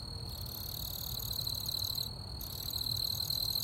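A cricket right outside a house chirps steadily and loudly in a continuous high-pitched trill, with a low rumble of outdoor night ambience underneath and no voices.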